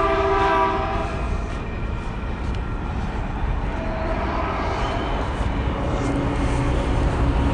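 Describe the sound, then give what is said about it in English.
A train rumbles past, its loud, steady roar filling the scene while a drawn-out horn sounds with sustained tones near the start and again partway through. “You hear the train go by.”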